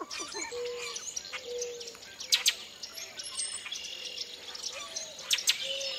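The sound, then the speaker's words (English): A dawn chorus in early spring at a national wildlife refuge pool in a Louisiana bayou: red-winged blackbirds calling from thickets, melodious northern cardinals and gravel-voiced boat-tailed grackles, with whistled songs, harsh chattering calls and sharp chirps overlapping, a couple of louder bursts and a soft insect hum underneath. “Red-winged blackbirds are calling from the thickets around the pool, along with melodious northern cardinals and gravel-voiced boat-tailed grackles.”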